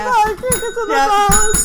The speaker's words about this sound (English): Ring the bell.